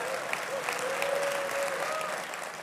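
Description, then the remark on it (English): A steady round of applause from an audience of about 400 people at a televised interview event, dense continuous clapping at an even level, with a faint held tone running faintly underneath. “A warm round of applause so that they know.”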